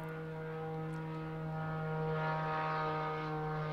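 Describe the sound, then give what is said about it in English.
A small propeller plane drones overhead with a steady, buzzing engine hum that swells slightly louder as it passes, with no voices. “Here comes that plane”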